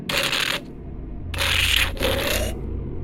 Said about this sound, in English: That was actually me sipping out of the pop can.